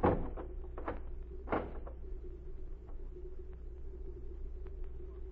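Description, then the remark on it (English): A heavy wooden barn door swings shut with a solid thud, followed by a few sharp latch and bolt clicks, all over a constant low rumbling hum. No one speaks. “Then get in the barn and keep quiet. You get in there with her. Hurry, I haven't time to talk. All right. Close the door.”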